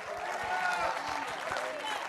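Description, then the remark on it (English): A church audience clapping hands together and shouting to the Lord in a dense, steady wash of applause, with a murmur of voices and shouts mixed in throughout. “Take 15 good seconds, clap your hands, give the Lord a mighty shout.”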